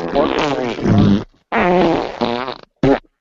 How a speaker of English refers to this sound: tell me that doesn't sound like a big fart. That's like wah. It's like a bunch of farts.